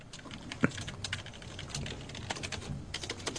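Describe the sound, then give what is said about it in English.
Rapid, irregular clicking of keys on a computer keyboard, a steady flurry of taps with one sharper keystroke early on, with no one talking. “who are you typing there? Just are you fucking finishing up a term paper?”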